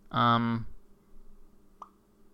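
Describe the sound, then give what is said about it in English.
A short, bright electronic Twitter notification tone, bold and harmonically rich, sounds once for about half a second, followed by a low hum and a faint click. “Hear that? That was Twitter.”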